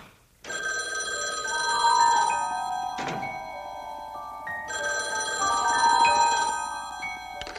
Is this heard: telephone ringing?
yes